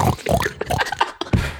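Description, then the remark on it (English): A person imitates a pig with a quick run of snuffling grunts and short nasal oinks, fairly loud, in choppy bursts with a brief pause near the end. “God, oh my god, I could just see you like on a bridge with a boy, and you're just like sniffing down, making little oinking noises.”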